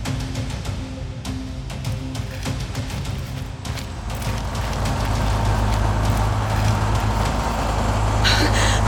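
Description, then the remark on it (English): A tow truck's heavy engine rumbles and grows louder as it drags a van away, low droning with clanks and scraping bursts, steady, rising to a strained mechanical roar toward the end. The truck bears the Strickland Corporation logo. “Ah, goddamn tow truck. What? Sorry, that's an old school thing. A retrieval service. Someone's trying to drag your van away.”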